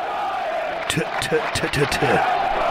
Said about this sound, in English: Man, that's a real crowd right there. And let me tell you something. That gives me chills.